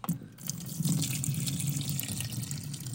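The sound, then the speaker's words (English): Extra coffee being poured down a sink drain: a steady splashing stream of liquid hitting the basin, running continuously for a few seconds with no voices. “Yeah, that's me pouring the extra coffee down the freaking drain, okay?”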